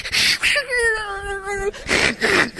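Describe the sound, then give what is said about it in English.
A person imitates a cat's yowl, mimicking a cat named Fluffy that flipped out clawing at a screen: a sustained, fairly high, steady wail lasting about a second, framed before and after by harsh, breathy hissing bursts. “anytime we mention the name of Jesus or the cross, this cat went flipped out, clawing at the screen, and we're sitting on the couch.”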